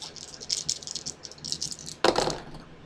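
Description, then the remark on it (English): Dice rattle briskly in a cupped hand for about two seconds, a dense clicking shake, then spill out with a sharper clattering burst as they tumble onto a hard surface. “You get to roll 7 dice?”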